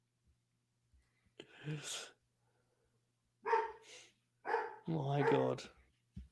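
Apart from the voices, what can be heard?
dog barking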